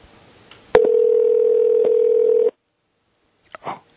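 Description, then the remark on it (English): A single steady electronic ringback tone on a phone call to a random number in Wichita, Kansas. It lasts under two seconds and is fairly loud, followed by silence and a couple of faint clicks. “Oh, God, it's ringing.”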